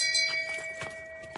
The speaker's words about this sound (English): Ring the bell. Ring the bell.